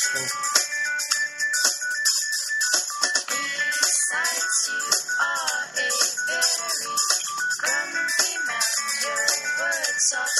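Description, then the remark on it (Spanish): A phone ringing tone plays continuously as a call is placed to a drummer: a bright, busy electronic melody of rapid, high-pitched notes with warbling tones, steady and fairly loud throughout, with no talking over it. “Tú estás comiendo en el coche y le marqué a Bones el baterista para contar si quería hacer un”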